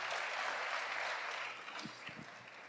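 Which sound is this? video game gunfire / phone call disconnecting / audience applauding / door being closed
audience applauding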